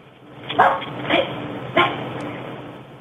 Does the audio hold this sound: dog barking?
yes